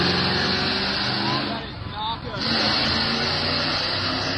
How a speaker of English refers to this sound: So this is a truck with America flag.